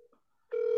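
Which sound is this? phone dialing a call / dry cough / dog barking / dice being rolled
phone dialing a call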